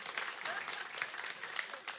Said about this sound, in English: And with that, friends, a round of applause for all the participants.